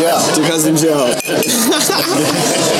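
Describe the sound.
Glasses clink together in a toast, bright ringing taps scattered over a couple of seconds while several voices talk and cheer loudly on top of them.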